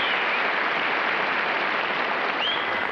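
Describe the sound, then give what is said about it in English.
A crowd claps steadily for a few seconds, a dense, even wash of applause from a studio audience with no voices breaking through. “She gets a little applause.”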